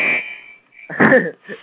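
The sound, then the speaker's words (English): A harsh, raspy electronic buzzer sounds in short bursts over a thin steady tone, loud, pausing briefly between blasts. “Buzzer likes that.”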